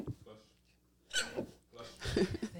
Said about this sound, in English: Bless you.